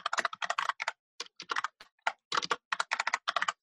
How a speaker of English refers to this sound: Paul's keyboard is so loud.